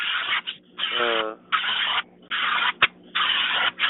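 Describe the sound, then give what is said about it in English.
A pressure washer sprays a car in loud, harsh hissing bursts, cutting on and off about five times with short pauses between, sounding muffled as if heard over a phone line. “You're spraying his car, and it's really loud and obnoxious.”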